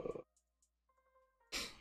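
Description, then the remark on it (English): A single sneeze: a short breathy huff and a couple of faint sniffs, then a thin, pitched intake of breath before a loud, sharp, hissy burst at the end. No one speaks. “I got to sneeze.”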